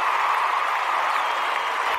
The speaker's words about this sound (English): Hold on. I know we have it. I want to soak it in as much as I can. There's your applause.